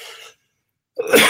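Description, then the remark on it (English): A brief breathy exhale, a moment of silence, then a loud, harsh cough bursts out, explosive and rough, cutting off abruptly. No one speaks. “That's my coughing fit.”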